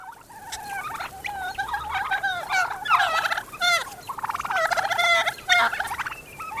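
A wild turkey purring: soft, rolling trills repeating in uneven bursts for several seconds, steady in loudness, with no talking.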